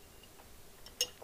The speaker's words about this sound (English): If you hear the pleasant clink clink, that's my spaghetti jar and my Google sponsored straw. I'm not sponsored, by the way, it's just the straw clinking.